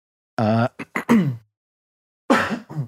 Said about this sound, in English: hates when I cough in the mic.